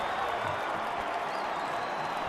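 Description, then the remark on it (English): Stadium fans cheer in a steady, dense roar of mixed voices and clapping that holds at an even, fairly loud level for a couple of seconds without letting up, as fans in the south end zone of Maverick Stadium cheer Tyler Algier's touchdown for the Cougars. “You hear the few Royal that are intermixed in the south end zone, the south part of Maverick Stadium, cheer on Tyler Algier as he got into the southeast corner of the end zone.”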